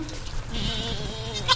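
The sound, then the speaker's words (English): Newborn goat kids on a farm bleat in high, wavering cries, one call overlapping another, with a brief sharper squeal near the end over a low rumble of outdoor background noise, on a sunny, breezy day about a mile from the Atlantic Ocean. “Baby goats are just so much fun.”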